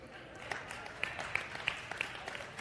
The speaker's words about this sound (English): See, your clapping even helped him get out of his chair.